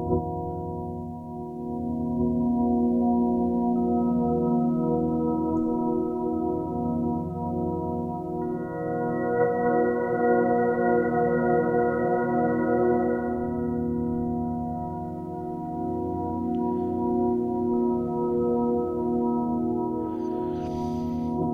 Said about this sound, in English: So if you want to listen real quick to the reverb.